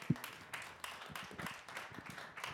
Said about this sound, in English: I also want to celebrate the remnant that I came into that kept this going, because we are going into today, this year is our 25th anniversary. We can celebrate it. We can clap.